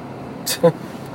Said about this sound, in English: Wow, I just hit a bunch of traffic right now. Fuck. This usually isn't this bad. And I'm right behind, like... sorry, guys. I'm, like, behind a smoky truck here. Burning fucking coal.